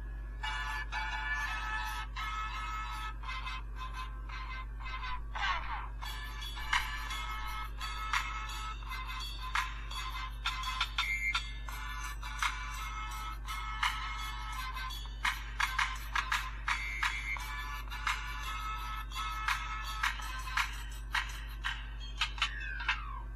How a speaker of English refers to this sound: I'm gonna play you my ringtone.